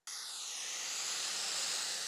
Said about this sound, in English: Sounds like white noise. You know that stuff you put on to help you fall asleep at night? That's what okay sounds like.